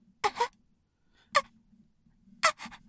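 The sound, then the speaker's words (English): A voice imitates sharp, gasping intakes of breath: a quick double gasp, a single one, then another pair, fairly loud over a faint low hum. “What's unnerving about it is they're silent and they're standing still, not moving, but they're still breathing.”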